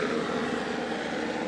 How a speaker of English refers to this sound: I love helicopters flying over.